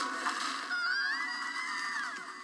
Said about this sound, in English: That was …'s scream!